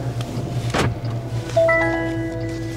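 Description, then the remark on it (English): A Waymo robotaxi's door closes with a brief whooshing sweep, then a steady multi-tone electronic chime rings out and lingers over a constant low vehicle hum. No one speaks. “Doors are closing.”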